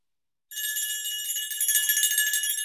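A phone rings for an incoming call from Doubletree Drive: after a brief silence, a bright, high-pitched electronic ringtone starts and keeps going steadily with a slight warble. No one speaks.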